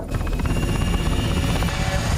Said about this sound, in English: This single spectrum helicopter flying through a city, then there's a second, then there's a third, and they're all approaching this massive tower in the centre, the Vulcan Tower, and a Vulcan Industries.